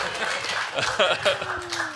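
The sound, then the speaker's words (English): A crowd roars with a dense, steady wash of cheering and jeering, a few louder voices bursting out above the din throughout. “The crowd goes wild. Equal parts cheers and jeers.”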